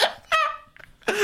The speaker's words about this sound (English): Yeah. It's like an over enthusiastic hiccup.